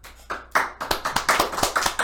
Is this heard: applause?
yes